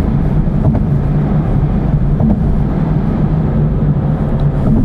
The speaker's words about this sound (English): Quite a lot of tyre noise as well. You can probably hear it slapping and banging.